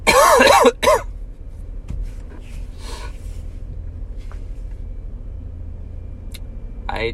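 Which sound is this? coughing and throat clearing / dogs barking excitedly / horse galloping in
coughing and throat clearing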